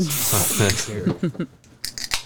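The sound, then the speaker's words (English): A voice speaks briefly, then a bottle opener pries the cap off a Liquid Death mountain water: a few sharp metallic clicks and short bursts of fizzy, high hiss in quick succession. “Bottle opener. Never mind. Found one.”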